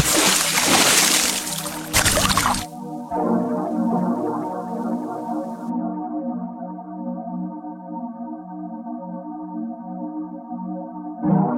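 A loud burst of water splashing for a couple of seconds, then a sustained, droning musical chord that holds steady until the end.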